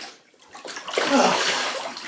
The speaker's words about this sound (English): Okay, now I'm sitting down in the bath.